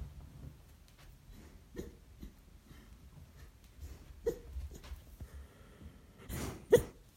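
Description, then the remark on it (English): A dog whimpers softly in its sleep while dreaming, a few faint, scattered yips and snuffles over quiet room tone, ending with a couple of sharper cries. “I don't think that's a good dream. Just so I wake him up. Oh. But you're not meant to wake people up. Oh, Ronnie. He's crying.”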